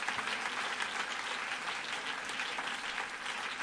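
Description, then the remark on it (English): A large church audience claps their hands to God in sustained, dense applause, a steady wash of many overlapping hand claps that stays full and even throughout, with no voices rising above it. “And everybody said, in Jesus' name, would you clap your hands one more time to God?”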